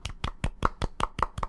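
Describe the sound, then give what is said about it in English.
Soft, polite golf clapping: about eight light hand claps in a steady, fairly quick rhythm, evenly spaced and muted, with no voices. “So like, we can golf clap that because I haven't done that yet.”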